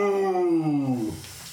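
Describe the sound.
A single drawn-out vocal howl, a person imitating a wolf with a loud, sustained 'ooh' that slides downward in pitch for about a second before trailing off into quiet room noise.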